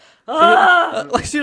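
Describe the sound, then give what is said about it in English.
A voice imitates the labored wheezing and panting of a 10,000-metre runner while running: a drawn-out, strained, tonal wheeze followed by a few quick, ragged breathy gasps, fairly loud. “He often wheezed and panted audibly while running.”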